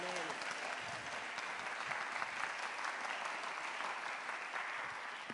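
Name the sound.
audience clapping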